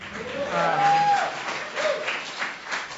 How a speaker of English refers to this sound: I'm here actually from here in San Francisco. It's fine. You can applaud.